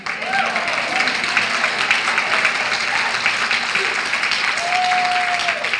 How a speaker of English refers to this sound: Before I get into the topic, I have to just give another round of applause to these young people from the Chenery Middle School.